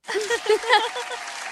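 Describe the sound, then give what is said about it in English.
A short burst of applause sound effect from a clap button, a dense, steady patter of many clapping hands with some cheering voices mixed in, lasting about a second and a half before it cuts off. “Where's my clap button?”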